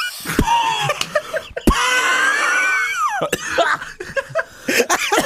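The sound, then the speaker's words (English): Several sharp coughs burst out between stretches of a high, warbling, wail-like vocal noise, the coughing loud and abrupt against the sliding tones; the person coughs because of making the vocal sound effect. “Yeah, made me cough.”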